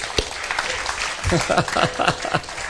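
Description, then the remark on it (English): An audience applauds to give the Lord applause during worship: dense, steady clapping throughout, with some voices cheering and calling out over it partway through. “Give the Lord some applause.”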